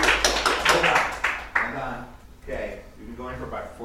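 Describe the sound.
Scattered, uneven clapping from a small audience for about a second and a half, fading as a man starts speaking over and after it.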